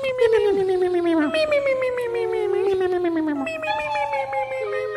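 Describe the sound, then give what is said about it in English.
A voice imitates a trumpet with one long, loud, wavering note that slides steadily downward, then rises briefly near the end, brassy over a faint low hum. “That was a trumpet.”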